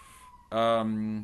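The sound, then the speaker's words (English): A fire siren sounds from a nearby firehouse, a faint steady tone first, then a loud, rich blaring wail that cuts in abruptly and holds for most of the moment. “Listening to another siren. Sirens. We live near to the firehouse.”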